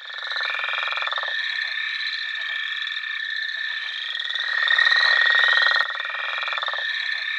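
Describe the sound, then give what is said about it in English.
Northern leopard frog calls rattling out as rough, snore-like pulses over a dense, steady chorus of frogs, fairly loud and continuous throughout with no talking. “The more common northern leopard frog.”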